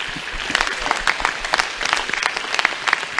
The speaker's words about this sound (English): Your patience, your faithfulness, you are just awesome. Would you give each other a clap offering?